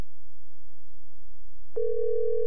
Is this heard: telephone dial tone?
yes